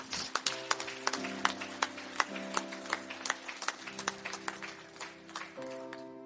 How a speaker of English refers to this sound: Let's give the Lord a hand clap of praise, would you?